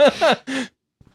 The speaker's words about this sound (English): The longest yawn. Wow.